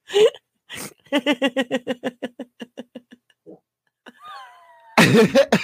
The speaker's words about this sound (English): Fart on cue.